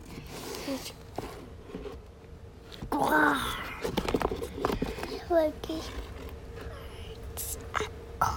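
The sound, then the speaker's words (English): A child's voice imitates the roar of Chewbacca, the Star Wars Wookiee: a warbling, growly vocal burst with a wavering pitch, then a couple of shorter yelping cries, over soft rustling and handling noise. “What noise does Chewbacca make? He's going roar.”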